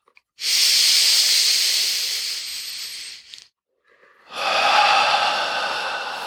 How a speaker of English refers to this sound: Anywhere we notice tension, extinguishing the tension on the inhales. Okay, so here we go. Breathing up from the earth into the lower belly.